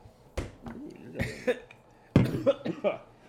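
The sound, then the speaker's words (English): Three or four wet, throaty coughs with short pauses between them and a loud, sharp burst near the end. “That wasn't a dry cough. Coughing a little sus.”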